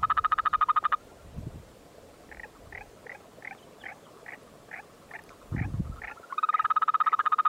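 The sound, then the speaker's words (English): A Yosemite toad in the Sierra Nevada woods gives a fast, buzzing trill, then a slower series of short evenly spaced chirps, and then another long trill. The calls are clear, with no talking. “And this is what the Yosemite toad sounds like.”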